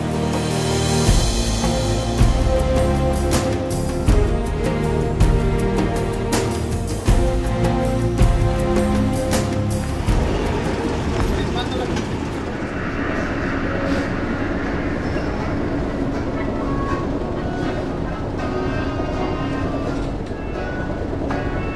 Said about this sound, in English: Right now we're on a ferry that's taking us through the sea islands of Chile, and we're passing through all of them right now. It's freezing cold.